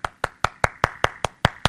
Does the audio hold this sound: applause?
yes